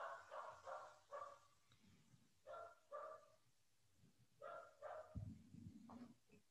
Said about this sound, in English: Y'all hear my dog in the background? Yeah. Probably.